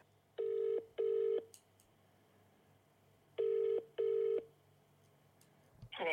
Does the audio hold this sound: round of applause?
no